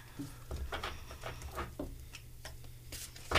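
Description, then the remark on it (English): A deck of large tarot cards being shuffled: a quiet run of soft, irregular papery flicks and rustles over a steady low hum, with no one speaking. “She's shuffling the deck.”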